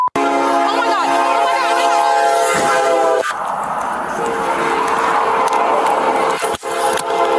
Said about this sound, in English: I hear the train. Do they not hear it?